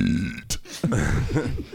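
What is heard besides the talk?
burp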